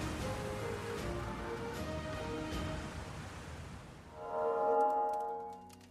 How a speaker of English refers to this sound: Oh, great. This rain is doing awful things to my hair.